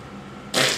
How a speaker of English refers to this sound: Oh, okay. Now it's a fart.